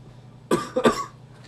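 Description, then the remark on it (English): A couple of quick, harsh coughs after exhaling vape, two sharp bursts in rapid succession, fairly loud against a quiet background with no talking. “You know, the slower you blow it out, the more you're going to cough, right?”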